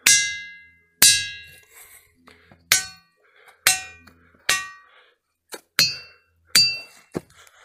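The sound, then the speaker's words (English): Big resonant tonal rocks, about 4 foot in circumference, struck with a hammer one after another: about nine sharp metallic-sounding clangs at uneven intervals, each ringing with bright overtones and decaying quickly, with slight differences in pitch between strikes. “all of these rocks have different tones.”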